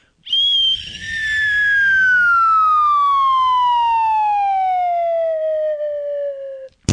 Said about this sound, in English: I found the slide whistle. I have it right here.